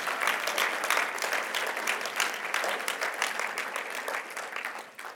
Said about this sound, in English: Thank you for coming up here. You can clap for that. That's fine.